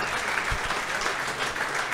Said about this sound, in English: He's drinking in that applause.